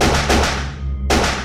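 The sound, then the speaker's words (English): Three loud, sharp gunshots crack in quick succession and then after a pause, each blast ringing out with a heavy reverberant tail as if indoors, with no voices present. “The cashier, who up till then had been trying to guard the entrance, fell to the floor with a wet thud, chest full of well-placed lead.”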